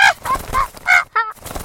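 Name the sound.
parrot squawking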